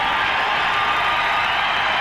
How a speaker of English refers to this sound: The applause continues.